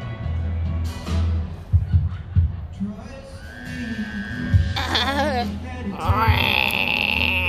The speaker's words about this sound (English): Well, our froggy friend came to visit us during our call. Oh, he's making more noises. I don't know if you guys can hear this over the music.